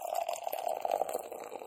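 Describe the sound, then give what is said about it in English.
Cali Creamin' cream ale from a can pours steadily into a glass, a continuous gurgling stream with a fizzy, splashing edge that holds for under two seconds, with no voices. “All right, so there's your Cali Creamin'. Pour a little bit from a still.”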